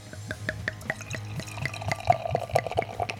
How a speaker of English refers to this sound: I'm gonna give it a little hard pour. Pour, John. Yep. I can hear your pour over here.